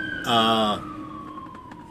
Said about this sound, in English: Wait, that ain't even the cops. That's an ambulance, isn't it? Sorry about that. I left my windows open because... It's hot and it's Hawaii.